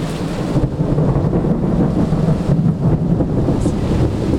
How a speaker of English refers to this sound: That first night home, without him, we had a huge storm. So, of course, I recorded it.